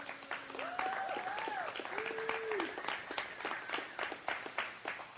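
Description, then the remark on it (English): Steady applause from an audience applauding mothers on Mother's Day, a dense wash of many hands clapping throughout, with a few voices calling out and cheering over it. “Let's give our mothers a round of applause.”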